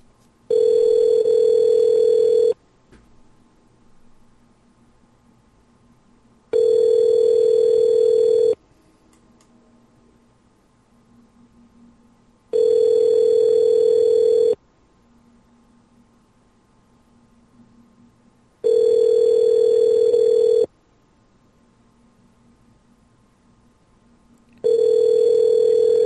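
A phone's ringback tone while calling a woman selling puppies: five steady electronic bursts, each about two seconds long with roughly four seconds of quiet between them, loud and clear with faint line hiss in the gaps.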